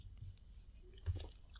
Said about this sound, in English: Hang on, I have one last sip.